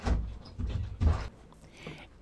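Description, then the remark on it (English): A door being opened to let in someone's mother: a few dull, low thumps and rattles in quick succession, the heaviest around the middle, then quieter scraping and shuffling, with no talking. “I'm sorry, I just had to get up to open the door for my mom.”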